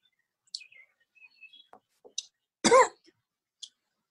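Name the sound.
coughing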